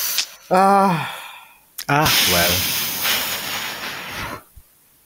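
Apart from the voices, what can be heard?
heavy breathing into microphone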